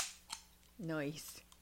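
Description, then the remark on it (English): A can of wine cracks open with a short fizzy hiss and a sharp metallic click, then a voice briefly speaks before another soft hiss. “Thank you for these canned wines,”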